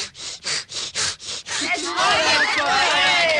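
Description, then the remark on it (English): A voice imitates a man sawing wood with about six quick, rhythmic rasping strokes, then shifts into a continuous hissing rumble with rising whistle-like tones, mimicking a train starting to pull away. Fairly loud. “Or a man sawing wood while a train starts.”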